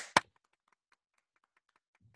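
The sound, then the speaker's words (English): One sharp, loud hand clap for the NHS right at the start, then near silence with a few faint small ticks and a soft low thump near the end. No voices. “Well, do you want to do 3 seconds of clapping now?”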